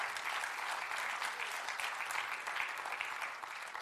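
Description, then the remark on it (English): An audience breaks into sustained applause as a clap offering to the Lord, a dense wash of many hands clapping at steady loudness for the whole stretch, with no single voice standing out. “Come on, give the Lord a great clap offering, amen.”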